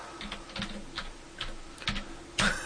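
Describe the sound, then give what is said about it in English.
Quiet, irregular clicking of keys as an actor's name is typed on a computer keyboard, a dozen or so taps with a slightly louder keystroke near the end, with no talking. “You know what's sad is that I remember the actor's name, because I'm typing it in right now.”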